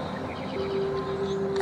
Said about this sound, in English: The birds are nice here. The sound of the birds.